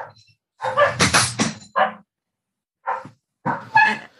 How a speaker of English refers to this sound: So well, you have a very vocal dog there in the background. Yeah. They just heard something.